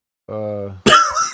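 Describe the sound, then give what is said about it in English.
A single sneeze: a short, steady voiced 'ahh' builds up, then breaks into a loud, harsh, noisy burst that trails off with a final puff of breath. “God bless you.”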